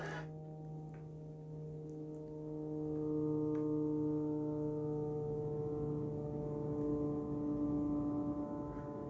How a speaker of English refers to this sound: Sheesh. Man, that little airplane has a buzz, doesn't it?